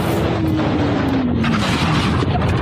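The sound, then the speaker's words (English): A motorcyclist lays his bike on its side in an intersection so it slides under a stopped pickup truck and out the other side: a loud, continuous grinding roar along the pavement with a whining tone that slowly drops in pitch. “listen to a motorcyclist approach a stopped pickup truck in the middle of the intersection and then put the bike on its side so it could slide”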